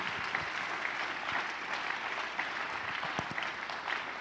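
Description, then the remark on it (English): Steady audience applause, many hands clapping in a dense, continuous patter that stays fairly even throughout, with no voices breaking through. “You're clapping a second house.”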